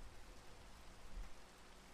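A steady, even hiss of falling rain with a soft crackle of drops on a surface, fairly quiet and unchanging throughout, with no voices.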